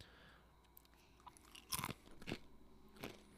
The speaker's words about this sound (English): Do you want to crunch on a pretzel? Sure. Sure.